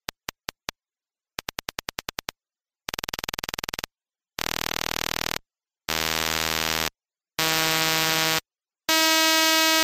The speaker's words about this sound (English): at the fastest rate, you just hear a buzzing sound with a high pitch